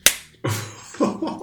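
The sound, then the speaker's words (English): A sharp, loud slap cracks out as the character Nero slaps a man, followed by a second heavier smack with a rough, lingering tail and some scuffling noise, with no voices. “And Nero is going to slap him.”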